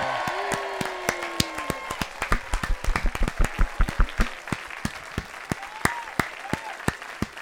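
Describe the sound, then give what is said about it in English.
A small studio audience of in-house fans applauds steadily with sharp hand claps and scattered whoops and cheers rising over the clapping, sustained for several seconds. “Wow, that's the longest in-house fans studio audience cheer I've ever heard in my life.”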